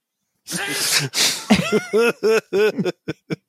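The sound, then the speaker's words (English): A sharp sneeze with two noisy bursts, followed by a run of short rhythmic laughs that trail off into quieter, spaced-out chuckles. “I'm going to keep that sneeze from this episode.”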